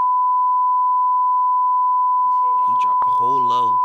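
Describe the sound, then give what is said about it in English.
A loud, steady censor bleep holds one high pitch for nearly four seconds, and near the end a person's speech surfaces briefly beneath the continuing tone. “You got to beep that out.”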